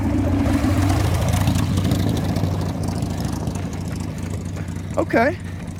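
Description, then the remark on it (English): A Harley motorcycle coming up from behind rumbles with a deep, steady drone over constant road and wind noise, its pitch shifting early on; a short vocal whoop cuts in near the end. “Hopefully we don't get tagged by this Harley that's coming up behind us.”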